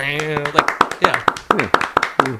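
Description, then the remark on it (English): Hands clap in a steady, quick rhythm, about ten sharp, bright claps in a row, applauding the ending of a studio-recorded song, over a voice making sustained tones beneath them. “That ending of that last song, I don't feel this impulse in a lot of like studio recorded songs, but it felt like I had to applaud there.”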